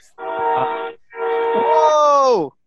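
A train sounds its horn in two long, loud, droning blasts, the second held longer and sliding downward in pitch as it fades out. No voices accompany it.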